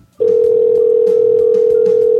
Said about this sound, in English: Oh, he hung up the phone.